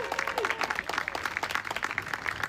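An audience's round of applause: dense, steady clapping from many hands filling the whole stretch at an even, lively level, with a few faint voices mixed in underneath.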